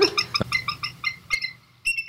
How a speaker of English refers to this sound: Yeah, instead of, well, bald eagles sound pretty stupid. So what do they sound like? They kind of sound, they're like high-pitched and squealing.